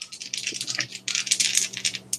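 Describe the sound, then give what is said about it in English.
Dice rattle and clatter in an Easy Roller dice tray during a criminology roll, in a quick run of bright, overlapping clicks. Two bursts are split by a brief pause, fairly loud, with no one talking. “These dice keep ending up on 90 stuffing, so no, I don't.”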